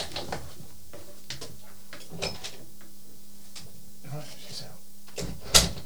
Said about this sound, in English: Right, she's out. She is out. She darted out as soon as I opened the door.